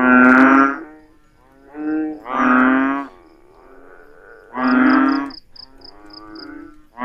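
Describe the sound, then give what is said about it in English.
A Table Mountain ghost frog, native to the mountainous Cape Peninsula region of southwestern Africa, calling: several loud, drawn-out harmonic calls in separate bursts, with a quick, evenly spaced run of faint high-pitched pips sounding partway through. “Take a listen to a ghost frog.”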